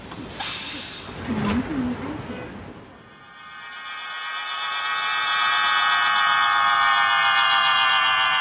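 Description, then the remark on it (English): Pigeon whistles on flying homing pigeons in Beijing: after a few seconds of breathy, hissing noise, a steady chord of several high, airy whistling tones swells up and holds, droning continuously to the end. “It's the noise of pigeon whistles.”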